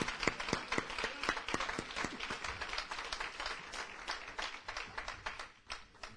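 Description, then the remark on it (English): A group claps together as a hand of praise, starting with strong, evenly spaced beats that loosen into a dense, ragged patter of many hands. It is loud and steady throughout, with no voices. “And come on, let's give him a hand of praise for our subject on this morning. Come on, let's take our hand claps up.”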